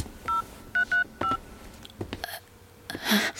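Four short electronic telephone keypad tones beep in quick, uneven succession as someone with shaking hands dials to call an ambulance, each a steady dual-pitched note, followed by soft clicks and a brief rustling burst of noise.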